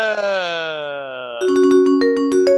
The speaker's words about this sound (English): That's such a pleasant timer sound. It is a pleasant timer sound.